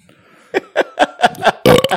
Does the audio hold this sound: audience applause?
no